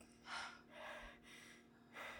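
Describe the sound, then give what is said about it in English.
A voice imitates creepy heavy breathing: four long, airy breaths drawn in and pushed out in a slow, steady rhythm, fairly quiet, with no talking. “It's, I think out of some of the horror, that's the weirdest is him just heavy breathing.”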